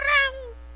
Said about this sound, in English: Is that London, actually? No, that was London, as the cat. Yeah, my cat's name is London. No, that was a cat sound effect.